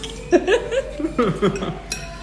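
Glasses clink together once in a birthday toast with mimosas, a bright ringing tap near the end, after a few seconds of voices and light laughter.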